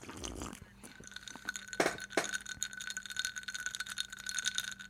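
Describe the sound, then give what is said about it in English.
Ice cubes rattle and clink against a glass of coffee in a continuous jostle, with a few sharper knocks standing out among the busy tinkling. “I needed to get that ice clinking.”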